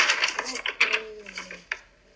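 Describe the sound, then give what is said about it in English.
Papers rustling and being shuffled in quick, crisp bursts with sharp handling clicks, while a voice murmurs faintly underneath. “We've got papers flying like... It's crazy.”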